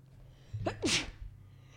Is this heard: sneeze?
yes